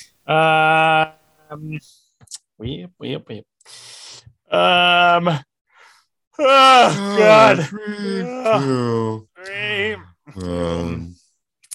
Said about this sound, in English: I might just leave that in as the intro. Me yawning, having no interest in actually professionally starting this podcast.